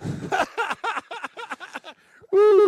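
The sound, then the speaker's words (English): A person imitates an owl with a rapid run of about eight short hooting bursts, a brief pause, then one sustained, louder hoot held at the end. Clear, with no other talk. “Give us the owl sound.”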